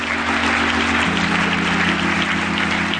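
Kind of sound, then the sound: crowd, audience clapping hands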